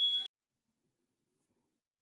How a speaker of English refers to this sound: I have a smoke alarm going off right now.